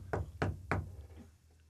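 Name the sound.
knocking on a door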